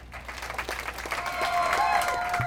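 An audience breaks into steady applause for the first speaker of the night, many hands clapping in a dense patter that swells slightly, with a few cheers or whoops rising above it toward the end.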